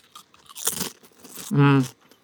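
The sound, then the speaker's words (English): A single crisp crunch of a Lay's potato chip being bitten, fairly loud, followed by a short voiced hum or vocal sound from the person eating. “The bolus is definitely very crunchy.”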